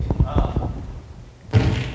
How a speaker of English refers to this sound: There you go. That's the fireworks.